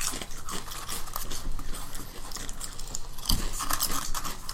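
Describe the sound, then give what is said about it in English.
Crunching of someone chewing crisp seaweed chips, a steady run of sharp, brittle crackles with no talking, loud. “That's very pretty flavorless. Crunchy.”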